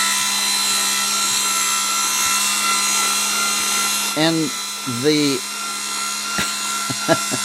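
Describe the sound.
An electric potato peeler's motor runs steadily throughout with nothing in it to peel, started by pushing its button, a constant buzzing hum with a whirring edge and no whooshing peeling sound, while a voice briefly speaks over it near the end.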